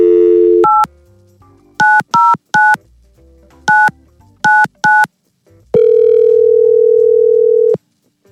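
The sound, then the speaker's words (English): A steady telephone dial tone, then a quick series of touch-tone keypad beeps in uneven bursts, followed by a long, loud ringback tone as a call from the Y100 radio show goes through. No voices. “So let's get Tyler on the phone and see what the deal is.”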